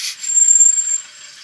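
Car brakes let out a thin, steady high-pitched squeal lasting about a second, riding over a hissy wash of noise before it fades out.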